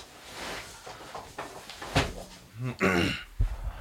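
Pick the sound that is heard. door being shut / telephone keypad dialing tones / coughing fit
door being shut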